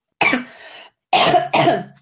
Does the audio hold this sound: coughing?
yes